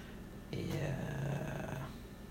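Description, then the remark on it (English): A low, rumbling animal growl lasts just over a second, rough and steady, then fades away into quiet background noise. “That was weird. Growl at me.”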